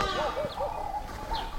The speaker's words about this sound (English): go ahead and add a little bit of a track in the background. And suddenly you feel like, nice early morning in Africa here with all my birds.